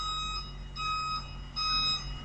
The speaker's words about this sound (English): Real car park vibes out here in the car park. Look at that truck reverse.